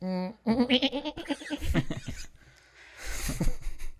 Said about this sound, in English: It said the... cute goat noise.